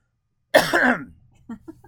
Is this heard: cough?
yes